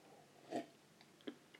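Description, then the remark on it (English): Quiet wet slurps from someone sipping water: a fuller gulp-like slurp, then a shorter one and a few faint mouth clicks, with no talking. “Ignore me slurping away on my water there, dry mouth.”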